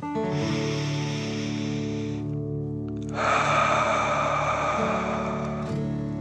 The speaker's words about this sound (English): Again, breathe in through your nose and out through your mouth, pretending you are breathing fire. Deep breath in and out.